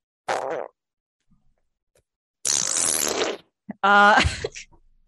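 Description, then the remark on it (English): A person blows three loud raspberry-style fart noises with their mouth, separated by short pauses, the last one buzzing with a wobbly, tonal flutter. “Just making fart noises.”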